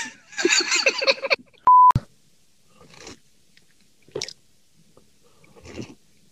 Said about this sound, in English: Taking some aggressive sips of my coffee. I hear that. Some aggressive sips.